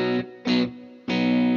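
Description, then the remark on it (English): A 1983 electric guitar, with its tone controls set back to the middle, strums three loud, sustained chords with a slightly gritty tone: two quick stabs, then a longer ringing chord after a brief pause. No voices. “There's a white switch on here as well. I'm going to put the tones back in the middle.”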